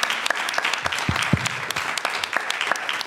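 An audience claps in a steady round of applause, a dense, crackling patter of many hands holding at an even, fairly loud level for about three seconds, with no voices.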